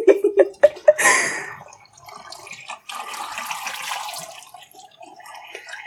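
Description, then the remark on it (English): Water is poured and spilled over a mother during washing, starting with a few sharp plinks and drips, then a broad gushing spill that keeps sloshing and trickling unevenly. No one speaks. “And she's spilling it all over her mom. Luckily, it's just water.”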